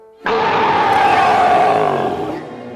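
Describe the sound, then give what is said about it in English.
A deep, loud growling roar from a kid imitating a big bear growl while Baloo teaches him to fight like a bear, starting abruptly and held steadily for over two seconds before easing slightly at the end. “Now give me a big bear growl.”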